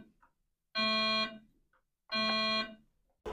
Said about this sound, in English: by the sound of the pitch of the buzzer